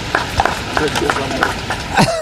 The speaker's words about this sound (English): Did you hear the applause? I heard the applause. Yeah. And that was probably his chief of staff.